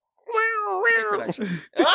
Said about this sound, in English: Wait, no, it's meows, meows, meows.